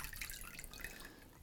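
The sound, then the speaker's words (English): Water splashes and patters steadily as it is poured onto a puffy down sleeping bag with a Gore Windstop shell during a water repellency test, a continuous dripping, trickling wash lasting the whole moment with no voices. “But I'm going to pour water all over the bag.”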